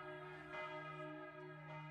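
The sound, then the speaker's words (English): Church bells ring out over a town with a sustained, resonant toll, their overlapping harmonic tones hanging in the air at a steady, moderate volume with no voices present. “Meanwhile, church bells rang out, bringing more townspeople into the streets to join the standoff.”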